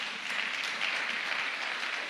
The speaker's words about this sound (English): They live with such great integrity. They're amazing people to be around. So could we give them a round of applause, if that's okay?